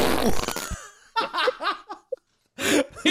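A thick, messy burst of several fart sound effects layered on top of each other, followed by bursts of laughter and another loud noisy blast at the end.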